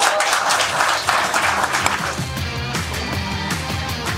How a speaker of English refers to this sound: Round of applause for our guests.